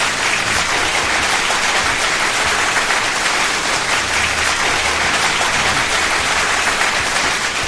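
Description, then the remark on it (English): A steady wash of audience applause for Oddball, dense crackling clapping that holds at an even, loud level for about eight seconds with no voices over it. “Let's give Oddball a big round of applause.”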